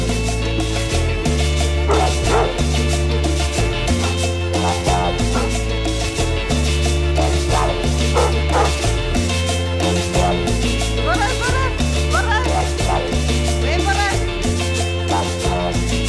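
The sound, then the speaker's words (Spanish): Dog barks and high yips recur over a steady, loud cumbia music track with a thumping bass line, played on KXSF 102.5 FM radio in San Francisco, the barking blended into the mix rather than standing out on its own. “perro está ahí.”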